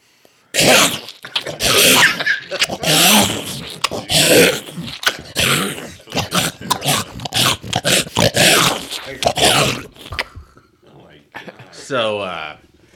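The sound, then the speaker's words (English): A voice imitates wet crunching, slobbering and squishing with a dense run of loud, choppy, sputtering mouth noises for about ten seconds, followed by a few fainter, higher wet squelches. “and you hear some... Very horrible crunching noises and slobbering noises and squishing.”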